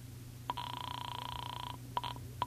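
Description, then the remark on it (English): A telephone being dialed: a sharp click, then a steady buzzing tone for about a second, followed by a few more clicks and short bursts. Fairly quiet, with no voices. “And I went back inside to the phone.”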